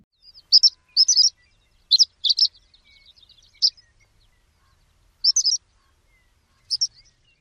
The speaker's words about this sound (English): The horned lark is weaker than the pipit and sometimes buzzy, which the pipit is never. One more time, the typical call of the horned lark.